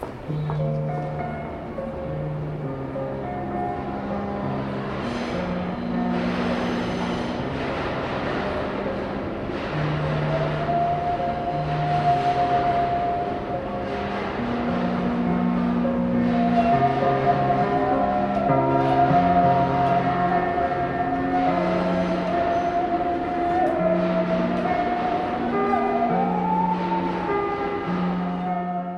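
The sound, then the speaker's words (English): A musical saw sings a slow, wavering melody of long gliding notes over a steady backing accompaniment, with the constant rumble and hubbub of a busy New York City subway station underneath. “Natalia Peruse plays the saw in the New York City subway system.”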